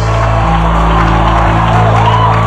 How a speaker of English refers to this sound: Give the Lord a clap of praise. Come on, clap for Jesus. Clap for Jesus.